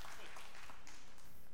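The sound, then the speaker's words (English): An audience applauds during a pastor's sermon, with many hands clapping in a dense, steady crackle that holds at an even level for about a second and a half. “I didn't say that for your applause.”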